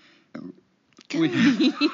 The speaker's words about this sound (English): Goddamn beer. The burp was not part of the question. You don't need to answer that. I'll just go ahead and I'll consider that burp the period at the end of that sentence.